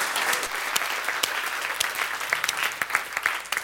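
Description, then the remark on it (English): A church audience claps steadily, many hands producing a dense, crackling wash of applause with scattered sharper claps standing out over roughly four seconds, without any voices. “Part of the, yeah, you can clap. That's amazing.”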